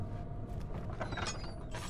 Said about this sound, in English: Hatch is too heavy to lift by hand. All right, so that's something. Turn it. Stuck. Something is clogging the crank.